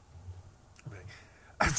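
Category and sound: human body sound, sneeze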